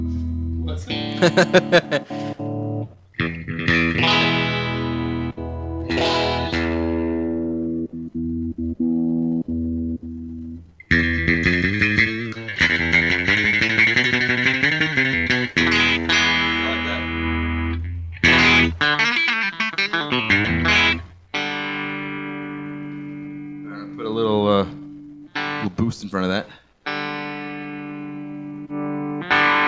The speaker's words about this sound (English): right now, this guitar has a, you know, hardware in it, computer hardware, that is emulating the sound of a Fender Stratocaster, because I don't have one here.